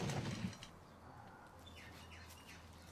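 A brief soft flurry of wings as lots of little birds fly in and out at the start, followed by a few faint chirps over a quiet outdoor background.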